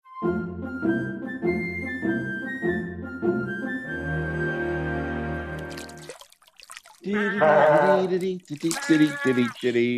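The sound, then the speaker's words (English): Goats bleat in loud, wavering cries while being bathed, water splashing and trickling around them, following a stretch of steady tonal music. “We got goats. You got a bathroom with a sunken tub?”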